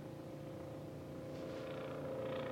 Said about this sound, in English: Do you hear that? I think a helicopter's going over. I try to do this and keep the noise to a minimum while I'm doing this and get into a room. And suddenly I'm hearing a helicopter fly overboard.